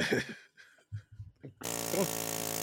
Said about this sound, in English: That's a drill or something. It's supposed to be a jackhammer? I don't get it.